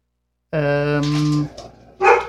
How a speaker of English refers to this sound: Hey, shush. Damn dogs.